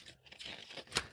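Quick, papery riffling of tarot cards being flipped through, a soft continuous rustle with a sharper snap near the end, fairly quiet with no talking.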